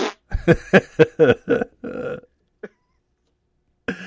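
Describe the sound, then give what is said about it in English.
A voice makes a fart noise with the mouth: a quick run of raspy, sputtering bursts ending in a longer buzzy rasp, fairly loud, then a brief pop and silence. “You're 50% on fart noises through the history of the illustrious history of this podcast.”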